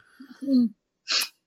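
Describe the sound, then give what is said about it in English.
A yawn: a drawn-out, low voiced groan that slides downward in pitch, then a pause and a short, breathy rush of air at the end. “And you're just yawning.”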